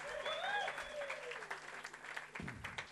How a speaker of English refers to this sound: Great job. Great worship tonight. Why don't we thank the guys? Fantastic. No, really thank them. There we go. Come on. Just give them a big cheer.